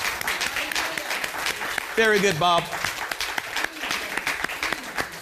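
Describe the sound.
An audience claps steadily for a man who says he feels much better, many hands producing a dense, continuous patter of sharp slaps. Midway, a man's voice briefly speaks over the applause.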